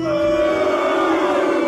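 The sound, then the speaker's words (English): A game show audience boos loudly and steadily, many voices holding a low, drawn-out jeer at the contestants for the whole short stretch without a break. “No, not booing.”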